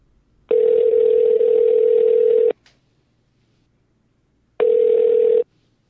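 A phone line rings as a call goes out to a guest of Blind Living Radio: a steady electronic ringback tone sounds for about two seconds, pauses with a faint click, then begins ringing again, thin and telephone-filtered, with no voices.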